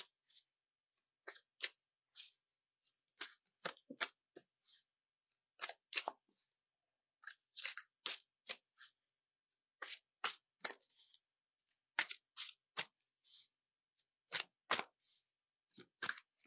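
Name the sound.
shuffling tarot cards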